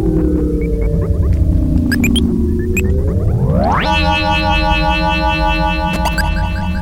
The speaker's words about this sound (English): Another feature of the reverb module I'm using right now is feedback. I'm turning that up, getting runaway feedback a little bit. That can be really fun too, especially when combined with the clock speed.